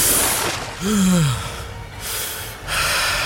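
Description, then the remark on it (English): A person gasps for air after swimming up to the surface of salt water: a single loud, sharp gasp with a falling voiced tone, surrounded by rough, breathy rushes of air, then another harsh exhale near the end. No speech. “He could feel the air fill his lungs, coughing up salt water while he did.”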